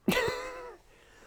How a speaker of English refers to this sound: Nah. I just cough now.